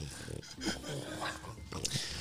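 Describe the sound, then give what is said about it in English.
Heavy, labored breathing of Puddle the dog, strained and ragged, loud and continuous for about two seconds, rising and falling in uneven, effortful pulls with occasional snorting or wheezy edges. “You hear the stressed and strained breathing of Puddle.”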